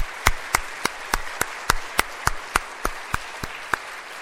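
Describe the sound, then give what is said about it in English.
A round of applause for the Awana helpers, with sharp, evenly spaced claps standing out at a steady pace over a softer wash of scattered clapping, holding a moderate level throughout with no talking. “If you helped at all in Awana this year, if you don't mind standing, and let's give them a big round of applause for all their faithfulness and hard work.”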